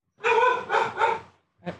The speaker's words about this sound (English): Hold on one sec. Get them, dogs. Get them. Sick them. Go on for a sec. Let me see what they're barking at.